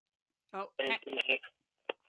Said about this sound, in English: We're having some technical phone glitch issue. Sorry, you started crackling in and out there for a sec. Okay, no, now you're back.